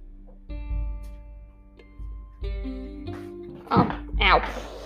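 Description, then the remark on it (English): A door closes with a few dull, low thuds over a steady electrical hum, followed by brief high-pitched whining or squeaking sounds near the end. “1 second, I gotta close the door.”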